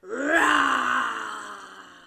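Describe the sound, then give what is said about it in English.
A single drawn-out vocal roar from a person imitating a lion, rising quickly and then sliding down as it fades, loud, with no other sounds. “Can you do a big lion roar for me?”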